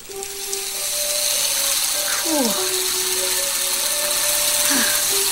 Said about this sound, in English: Two-directional drill. You run it backwards, the numbers go down. Watch your speedometer.